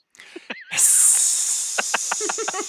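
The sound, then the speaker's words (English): A rattlesnake's rattle sets in suddenly as a loud, steady, high dry buzz, joined later by a quick run of rhythmic clicking pulses beneath it, with no talking. “Rattle, rattle, rattle, rattle, rattle. That's a rattlesnake.”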